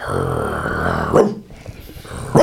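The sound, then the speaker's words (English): A person imitates a dog with a sustained growl that breaks into two sharp, loud barks, with a brief pause between them. “if I see her ass on my TikTok one more time, you'll start barking”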